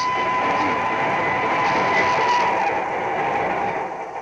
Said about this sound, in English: The train is almost on top of me. I start falling onto the tracks right in front of it.